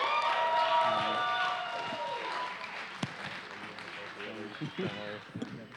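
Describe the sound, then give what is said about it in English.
A crowd applauds and cheers as a guest speaker comes up to preach, loudest over the first few seconds, then the clapping thins out as a voice starts talking, with one sharp knock partway through. “Give him a clap as he comes.”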